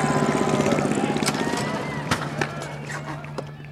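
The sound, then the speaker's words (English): A small motor runs with a steady, buzzing drone and rapid rhythmic pulsing, broken by a few sharp pops and crackles as it sputters unevenly. “Listen all to right, that motor okay, run. Let's hear it sputter.”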